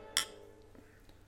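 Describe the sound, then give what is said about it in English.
Glasses of beer, an 8% Green Label beer called Unity, clink together once in a toast, a bright, high ringing chime that fades quickly, followed by a quiet stretch with a couple of faint soft taps. “Indeed. Cheers. Cheers.”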